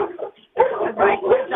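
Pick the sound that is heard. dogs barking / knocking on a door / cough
dogs barking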